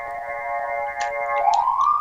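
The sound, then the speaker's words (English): A siren wails with a steady, harmonic tone that swoops upward in pitch near the end, fairly loud and unbroken, with a couple of faint clicks on top and no voices. “There's sirens and stuff.”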